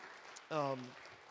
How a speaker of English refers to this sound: And so can we just give it up for all the mothers in the room, please? Yeah. Cheer loud.